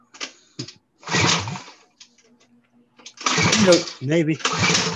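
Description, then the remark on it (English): A motorbike engine being started up: a few short sputtering bursts, a loud rough crank, a lull with faint ticking, then the engine catches and roars loudly in uneven revving surges. “You want to fire that thing up? Yeah, we can start it up.”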